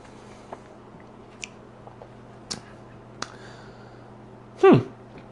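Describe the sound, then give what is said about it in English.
A few faint, sparse clicks, then one short slurp as a drink with water added is sipped near the end. No one speaks. “So let's go and take a taste, this time with water.”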